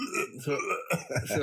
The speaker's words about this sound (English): I hope you're not going to be burping around here because I'm the burpy boy around this household.